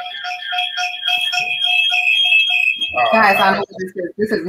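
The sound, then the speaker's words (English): A phone alarm rings with a shrill, steady electronic tone and a rapid pulsing beep for about three seconds, then people start talking loudly as it cuts off. “Yeah, Kill your phone. We know.”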